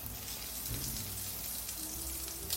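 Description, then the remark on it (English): Croquettes frying in sizzling oil in a pan give a steady, dense crackle and hiss that holds even throughout, with a faint low hum underneath and no one talking. “So before the break, we place our croquettes into our pan with the sizzling oil.”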